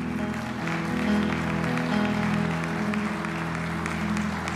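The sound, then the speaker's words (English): A church audience claps steadily for several seconds to honor a member's ministry of mercy, a dense, even wash of applause with sustained musical tones, like organ or keyboard chords, holding underneath. “We applaud you, brother, for that ministry.”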